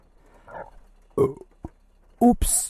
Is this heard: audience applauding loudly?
no